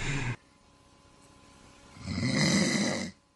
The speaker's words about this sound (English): The kids used to moan and groan about me snoring, particularly at night. Come home and sit down in front of the television, 7 minutes, snoring away. You know, Dad, shut up!